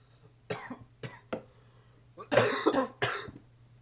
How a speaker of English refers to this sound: Oh, fuck. It's hard not to cough.